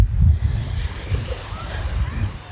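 Small waves lap gently on soft, light brown sand on a beach in Mexico in a steady, soft wash, with low rumbling swells and a faint breeze, and no voices.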